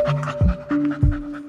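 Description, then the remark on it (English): A dog pants quickly and steadily, its breathy huffs repeating in a fast rhythm with a faint steady hum in the background. No one speaks. “the dog I'd send into a baby nursery.”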